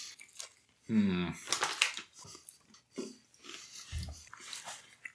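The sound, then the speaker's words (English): Loud crunching and chewing of a crispy Chick-fil-A fried chicken sandwich in uneven bites, broken by an appreciative hum and soft breathing. “I got crunch on my Chick-fil-A sandwich too.”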